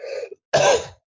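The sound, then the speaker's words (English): A single loud sneeze: a brief voiced intake of breath, a short pause, then a sharp, breathy burst that fades quickly. “Bless you.”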